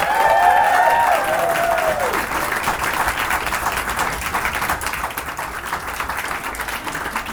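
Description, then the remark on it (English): A crowd at the Stack awards applauds steadily for about seven seconds, a dense wash of clapping, with a few high whistles and cheers rising over it at the start before settling into sustained, slightly fading applause. “I think we should all have a bigger round of applause for Steve for doing what he does with Stack and the awards and everything.”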